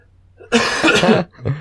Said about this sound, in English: Oh, that cough is back.